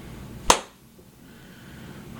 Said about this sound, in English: Just gonna clap so I can cut it.